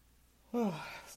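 A single yawn: a voiced tone that slides downward in pitch, then trails off into a breathy exhale lasting about half a second, with no talking.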